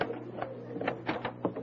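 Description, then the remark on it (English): A front door is opened, with a quick series of mechanical clicks and rattles from the latch and handle over a steady low background hum. “Oh, stop talking so much and open the door.”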